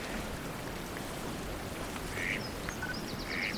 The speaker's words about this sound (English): So, just an exotic mallard so far.